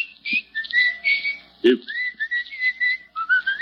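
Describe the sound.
A person whistles a melodic tune, the notes gliding and wavering in short phrases, with a brief low thump partway through.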